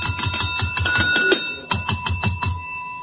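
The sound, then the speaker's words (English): Handheld bells ring rapidly and repeatedly, a bright jangling peal with steady sustained tones, fairly loud, one bell sounding around C and another in G, pausing briefly before the clanging resumes. “Yours is too high pitched. It sounds like C, and mine is in G. Yours doesn't carry the authority.”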